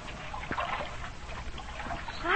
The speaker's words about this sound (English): Great Scott, there's 2 feet of water in the hold, and we're shipping more.